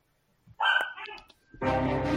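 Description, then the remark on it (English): A dog gives a short burst of barks and whines, followed by a loud swell of broad, layered epic music kicking in. “The epic music and the blues barking.”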